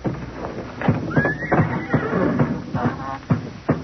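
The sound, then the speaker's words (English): Old horses tied up in their stalls whinny and neigh inside a barn, a high rising call cutting through a busy mix of snorts, shuffling and hooves thudding on a wooden floor. “All those old nags tied up in their stalls?”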